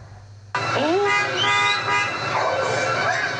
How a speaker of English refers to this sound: People honking, hoping the dogs will stop attacking.